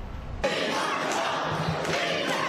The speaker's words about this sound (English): A packed house at the South Shore International College Prep High School. The crowd voicing their opinion, strongly opposing the addition of migrants in their community.